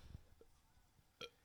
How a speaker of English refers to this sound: Little baby burp. I thought this was going to be a lot more impressive, honestly.